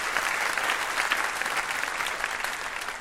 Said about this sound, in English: Fantastic. A round of applause for Piper Kerman.